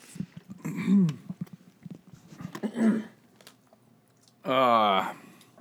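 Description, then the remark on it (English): Wet mouth noises of a person slurping and scraping with the tongue at the remaining pieces of a s'mores mochi, coming in a few uneven bursts and ending with a louder, drawn-out squeaky slurp. “Let me try to scrape this out with my tongue.”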